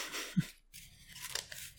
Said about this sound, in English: Shuffle the remainder of the Watcher encounter cards into the Spectral encounter deck along with the Spectral discard pile.